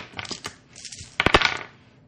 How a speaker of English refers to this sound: Oh, two dice? Yeah, minus two. Will we re-roll that? Yeah, re-roll. Minus two.